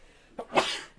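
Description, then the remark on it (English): A single sneeze: a quick sharp intake of breath followed by a loud, hissy burst that trails off within a fraction of a second, with no talking. “Bless you.”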